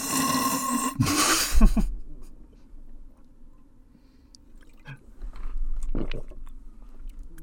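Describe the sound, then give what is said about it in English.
A gulp of water being swallowed: a short burst of wet mouth and throat noise at the start, then near quiet with a low hum and a couple of soft clicks. “Did you hear that nice swallow?”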